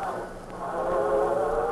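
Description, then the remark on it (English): A train rumbles steadily on the track at a railroad crossing, a loud continuous roar with a droning metallic tone running through it, swelling slightly louder as it approaches. “There's a train.”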